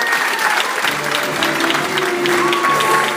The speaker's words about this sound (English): What you can hear in the background there is the applause for the final announcement of the self-nomination categories, which is this year's Rising Star category.